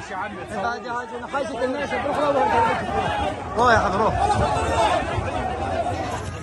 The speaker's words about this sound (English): So in the video, you can see sort of crowds of people swarming an aid truck, climbing on top, trying to reach desperately needed aid.